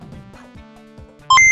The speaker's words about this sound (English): Calculating computer activated. Computers, beeps, boops. Scoring complete.